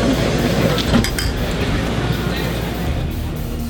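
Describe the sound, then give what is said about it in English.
A few quick glass clinks ring out close together near the start, like glasses touched in a toast, over a steady background hum with some indistinct voices. “Cheers. Cheers.”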